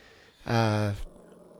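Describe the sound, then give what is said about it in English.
A dog gives a single short, loud growl lasting about half a second, with quiet background noise before and after. “See, the dog knows. The dog knows.”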